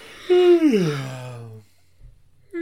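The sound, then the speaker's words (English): A single long, breathy yawn with a voiced tone that starts high and slides steadily down in pitch for about a second before trailing off into quiet. “A yawn.”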